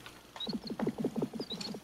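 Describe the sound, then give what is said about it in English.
A very fast bird heartbeat from an educational film, a rapid, steady run of low thumping pulses with a faint high chirping above it, like a whirring ratchet. No one speaks. “Here's Mr. Bird's heart.”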